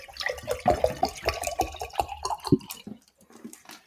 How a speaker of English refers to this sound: So everyone, pour yourself a glass of water. Glug, glug, glug, glug, glug.